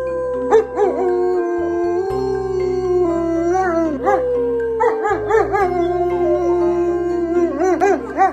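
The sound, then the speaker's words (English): Joe Kernan's three German Shepherds, Freddie, Gunther and Pongo, howl together, long rising and falling wails overlapping loudly and continuously, with a few short yips breaking in and no one talking. “And Joe Kernan's dogs, Freddie, Gunther, and Pongo, here is actual audio sent to us exclusively from Joe's German Shepherds, couldn't agree more.”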